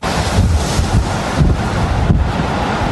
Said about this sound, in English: Peak wind gusts in Tawasin hit 101 kilometers an hour yesterday morning, 85 kilometers an hour at the airport, and 120 at Saturna Island. The weekend storm whipped up waves, knocked out power to tens of thousands of customers